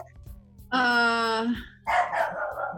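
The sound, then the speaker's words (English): A female pet dog lets out two loud barks: first a long, drawn-out tonal bark, then a rougher, noisier one after a short pause, over a low background murmur. “Now my dog is barking.”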